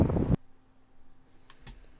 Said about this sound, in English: Yeah, it was a bit windy that day, so it was interfering with my just a bit, my commentary.